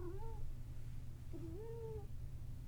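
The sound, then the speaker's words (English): Two drawn-out meows from a cat named Lucy, each rising then falling in pitch, a short pause between them, over a steady low hum of background noise. “He includes pets in this, and you might have just heard my cat, Lucy.”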